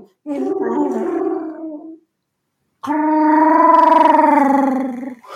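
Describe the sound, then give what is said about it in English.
A person imitates Chewbacca's Wookiee roar in two gargling, wavering bursts: a shorter one, a pause, then a longer, louder and more sustained one. The voice is fairly high-pitched for the sound. “That's too high for Chewbacca. God, it sounds like Tweety Pie doing Chewbacca.”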